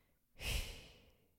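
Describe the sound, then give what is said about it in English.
Someone imitates her husband's heavy breathing while he sleeps: one loud, airy exhale that starts abruptly and slowly trails off over about a second, with no talking. “And he doesn't really snore so much as he's just like”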